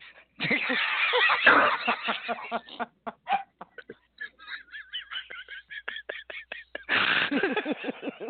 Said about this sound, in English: Oh, someone's clearing her throat.